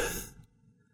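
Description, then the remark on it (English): A single breathy yawn, voiced as an imitation, starts loud then fades quickly over about half a second into near silence. “Home the next day yawning like that.”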